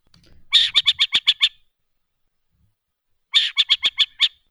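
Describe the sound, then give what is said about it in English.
A Western burrowing owl calls in two harsh, rapid chattering bursts of about six raspy notes each, separated by a short silence, loud with no voices. “here are a couple calls that are familiar from the Western burrowing owl. This is their call.”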